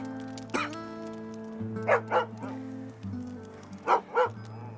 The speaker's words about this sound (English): dog, Kojak. That's a good boy.